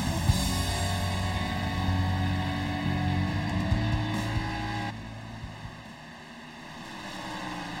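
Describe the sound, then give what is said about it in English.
Steady, droning roar of simulated race car engines on an oval track in the eDASCAR iRacing All-Star Race at the virtual Rockingham Speedway, holding a high pitch, the sound dipping slightly partway through as the cars pass, with no voices over it. “You've been watching the battle for the race win, and we're going to take you all the way through the end of this one.”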